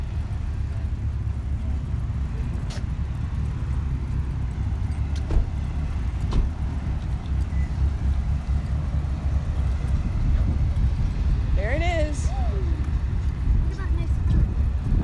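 A bright red MG convertible sports car rumbles along the street, its low engine noise steady throughout, with a few brief high chirps near the end.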